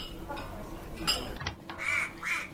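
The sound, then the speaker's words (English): Ducks quack in a few short, nasal bursts over a steady background rumble in a train's storage carriage full of ducks, of moderate loudness, with the calls growing more distinct toward the end. “I search the storage carriage full of ducks.”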